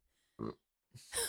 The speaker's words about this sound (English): There were burps the last one. There's burps on this one. Yeah, there's burps on everyone, I feel like. Probably. Yeah. Some more audible than others.